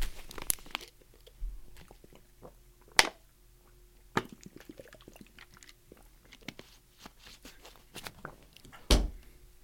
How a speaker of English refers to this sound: I'm going to take a sip of this water real quick.